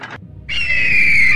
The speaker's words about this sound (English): The dwarf pulls the lever. Pull the lever! There is a clanking sound and a screech.